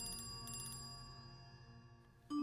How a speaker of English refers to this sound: I thought you were supposed to silence your phone. I know, so sorry.